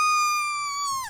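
A duck call blown poorly gives one sustained, nasal squawk. It holds a steady pitch for about a second, then cracks and drops sharply at the end, with no voices.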